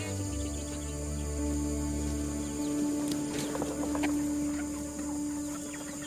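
Chickens cluck on a farm in short, scattered bursts over a steady mechanical hum, the calls thickening midway through and fading toward the end, with no one speaking.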